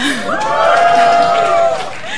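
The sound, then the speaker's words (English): A short burst of cheering and whooping from several voices of the Africans in the room, fairly loud and held for about two seconds, with overlapping rising and falling vocal tones before it trails off. “I'm African, so the Africans in the room, we can all give a cheer.”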